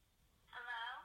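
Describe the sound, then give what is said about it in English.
A single electronic telephone tone sounds over a phone line as a call is placed, after a brief near-silent moment, steady and fairly loud for about half a second. “Take the phone right now. Let's just see how my daughter's answer.”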